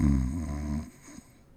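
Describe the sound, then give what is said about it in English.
A single loud, rumbling snore, a deep buzzing inhale lasting under a second before dropping away into near silence. “You snore.”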